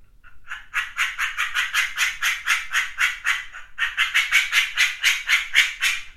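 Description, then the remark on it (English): A partridge call blown on a bird-call instrument: a rapid run of harsh, rasping chirps in a steady rhythm, briefly pausing midway before continuing, with no talking. “This is supposed to be a partridge, this one.”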